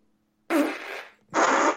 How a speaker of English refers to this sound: I know, but I would like to hang up on them and just send them straight to voicemail. We could play burps over their call. Listen to this.